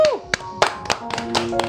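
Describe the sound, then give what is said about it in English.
A handful of people clap unevenly for a couple of seconds in thanks to two ladies for their contribution to City Music, sharp claps landing at irregular intervals, with faint voices and a sustained tone in the background. “you know, and I think deserve a round of applause.”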